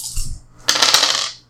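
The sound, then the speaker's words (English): Dice are rolled across a hard surface, landing on a five: a brief first rattle, then a longer bright, tumbling clatter that fades out. No one speaks. “So I just rolled...”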